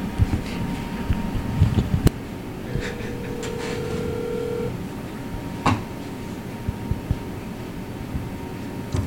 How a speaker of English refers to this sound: why don't you give him a call? Let's dial him up.